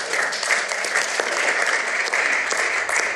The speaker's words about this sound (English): We give her a clap.